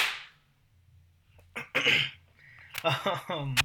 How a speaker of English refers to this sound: Do you want to clap? Yes, I do. 1, 2, 3...